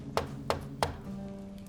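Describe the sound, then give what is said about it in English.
Three evenly spaced, sharp knocks on the door of someone's quarters, followed by a soft low hum and a faint fourth tap near the end. “He will knock first, not to intrude.”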